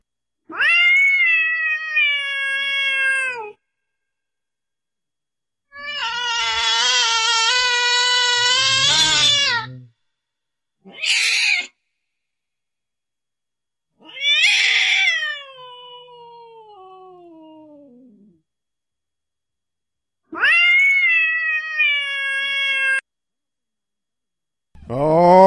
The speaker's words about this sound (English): I'm going to get this cat under control. I'll be right back.